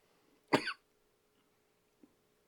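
One short, sharp cough bursts out close to the mic, followed by a faint small click and near silence, with no talking.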